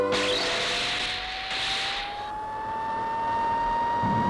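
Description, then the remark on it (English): A car engine roars as the car leaves a ruined abbey, Fonte Abbey, a steady loud drone whose pitch climbs slowly as it accelerates, with a hissy rush of noise over it and no voices. “car is now leaving the ruined abbey, having presumably found the clue.”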